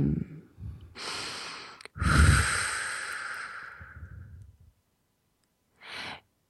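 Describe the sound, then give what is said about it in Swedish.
A deep breath taken before singing: a short intake, then a long, loud airy rush lasting a few seconds that fades out, followed after a pause by one brief puff of breath. “Jag ska bara andas.”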